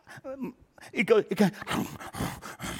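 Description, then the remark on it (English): A human voice imitates a dog gnawing on a bone: throaty whines and growly grunts, then a run of wet, noisy chomping sounds, performed alone without any spoken words. “You ever watch a dog chew its bone?”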